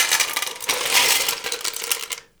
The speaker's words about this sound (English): But anyway, I'm just pouring the ice in.